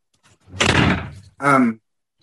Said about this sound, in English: One second, I'm going to shut the door.